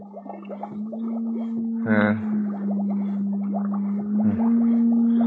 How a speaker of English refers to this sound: Encephalograph.